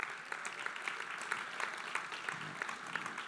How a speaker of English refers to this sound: People are clapping. I'm going to clap too.